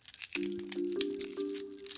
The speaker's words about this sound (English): That one sounded more like rustling, like someone unwrapping something. Mm-hmm. Unwrapping. And so what type of material would you be unwrapping? Plastic. Sounded like plastic. Yeah, like a plastic, like seal, like around a peppermint.